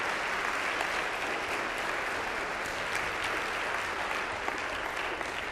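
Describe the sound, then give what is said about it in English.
A large audience applauds God steadily, a dense wash of many hands clapping at once that stays loud and even for several seconds without fading. “Would you mind applauding God for what he has done in helping this develop?”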